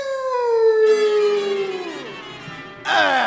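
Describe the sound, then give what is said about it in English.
An Airedale dog lets out a loud, drawn-out howl that slowly slides downward in pitch, and a fresh howl starts up just as it fades, with no voices present. “So you're the Airedale that's been keeping me thought out late every night, huh?”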